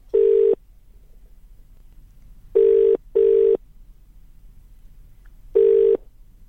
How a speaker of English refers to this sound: Every time we ring Damien English, we get the answering machine.